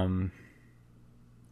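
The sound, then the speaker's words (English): A single sharp click of a computer mouse, clicking on UPS, comes near the end, after a brief burst of voice at the start and a quiet pause. “Ooh, I'm clicking on UPS.”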